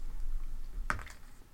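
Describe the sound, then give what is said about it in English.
Dice tumble briefly across a tabletop for a damage roll in a game: one sharp clack followed by a couple of quick, lighter rattles, over within a moment, with no voices. “Yeah, I think you yell that, and as you yell that, well, actually, roll your damage.”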